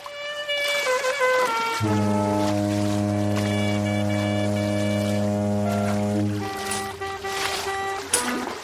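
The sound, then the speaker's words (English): On a sinking cruise ship, a clarinet is played to calm the passengers: a few higher notes, then one long, low, buzzy tone held for several seconds before returning to higher pitches. It is fairly loud, with no talking. “Play your clarinet as we go down drowning to calm the people that paid to come on this cruise.”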